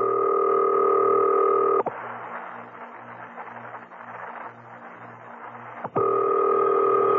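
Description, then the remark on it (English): A telephone is dialed: a steady electronic tone, then about four seconds of rapid rhythmic clicking and whirring, then the tone returns. Clear, with no one talking. “Now, I must have quiet while I make this call.”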